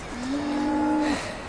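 A cow gives one steady, drawn-out moo lasting about a second, clear over a faint outdoor background hiss, with no voices.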